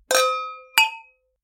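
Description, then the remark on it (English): Two bright glass clinks of wine glasses touching in a toast, each striking sharply and ringing with a clear, high, slowly fading tone, the second shorter and quieter than the first. “Well, without further ado, I say cheers. Cheers.”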